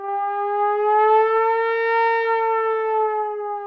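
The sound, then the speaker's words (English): Brass instruments mimic a siren, holding one loud, sustained wailing tone that swells gently upward and then sags back down over a few seconds, with no voices. “But wow, that's a very authentic sounding siren. And here's the real brass copying it.”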